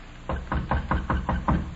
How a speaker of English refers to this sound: Okay. Knock on the door.